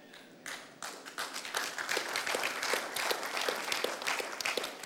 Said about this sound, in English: That was the most subdued, slowest clap I've ever heard in my life.